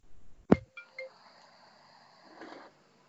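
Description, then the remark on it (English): A single short electronic phone call notification ding rings out with a sharp onset and a faint high tone lingering briefly, followed by a soft muffled rustle, with no talking. “Oh, did you get a phone call?”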